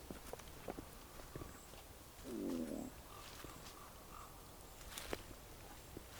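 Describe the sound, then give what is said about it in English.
A crow honks faintly in the distance a few times beside a reservoir with oak trees, while footsteps crunch and one louder, low sound briefly stands out in the middle. “I can hear some kind of crow honking away in the distance there.”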